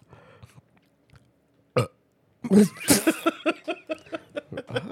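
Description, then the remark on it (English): A loud burp erupts after a quiet stretch with a brief thump, then dissolves into a run of rhythmic bursts of laughter. “I literally burped and I fucking pointed at the window.”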